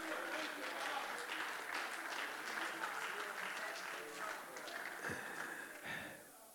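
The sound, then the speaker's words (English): An audience claps their hands in praise of the Lord, a dense, steady wave of overlapping claps that holds strong for several seconds, with a few voices calling out before it eases off slightly at the end. “Lord, just give the Lord a hand clap of praise.”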